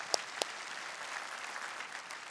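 A church audience applauds during a sermon: two sharp, loud claps stand out at the start, then a steady wash of many hands clapping continues at an even, moderate level with no voices.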